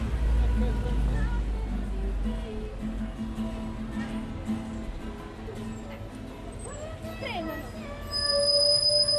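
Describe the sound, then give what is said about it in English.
A bus's brakes squeal in a high, sustained screech near the end as it brakes, over a constant low engine rumble and background chatter, with a faint child's voice. “See the screech there of the bus breaking.”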